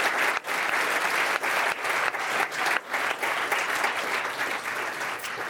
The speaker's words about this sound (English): All right, let's give them a round of applause.